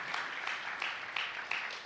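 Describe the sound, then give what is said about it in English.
A crowd claps steadily in a round of applause for the work of Dream Center, producing a dense, continuous patter of many hands with no pauses, moderately loud, with no one speaking over it. “Let's just give another round of applause for what Dream Center's doing”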